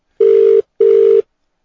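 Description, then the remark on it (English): Two steady electronic ringback tones from an outgoing phone call, each lasting under half a second with a short gap between, clear with no voices. “Here we go. We're ringing.”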